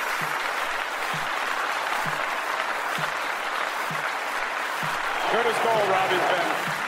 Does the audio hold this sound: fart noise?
no